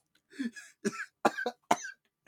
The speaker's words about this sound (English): Coughing on a vape, …? I'm just coughing.